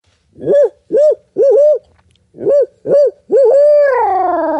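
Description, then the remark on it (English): A man imitates a hoot owl call with his voice, giving a rhythmic series of short, arched hoots, then finishing with a long, drawn-out wavering hoot. “Yep, rip out an owl hoot.”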